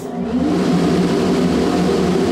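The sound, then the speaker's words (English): A loud, steady rush of blowing air from the air shower at the entrance to the Jet Propulsion Lab's spacecraft clean rooms, removing dust particles from smocks, gloves and hats, with a constant low mechanical hum underneath and no break for the whole stretch. Nobody speaks. “What we're doing is blowing air to remove any of the dust particles that may have inadvertently landed on our smocks and gloves and hats.”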